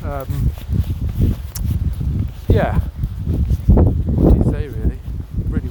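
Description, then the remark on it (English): Strong, gusty wind buffets the microphone outdoors at the wetlands during a walk with dogs on a blustery, cloudy, drizzly Saturday, 12 August 2023, a steady low roar that swells and surges throughout, with a brief voice and some rustling or footsteps mixed in underneath. “It's blustery, windy, cloudy, drizzle.”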